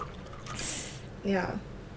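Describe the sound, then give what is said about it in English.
Sparkling rosé wine from Trader Joe's is poured into a glass, with a brief fizzy hiss followed by a short gurgling pour whose pitch rises as the glass fills, fairly clear. “It does look cloudy when you poured it.”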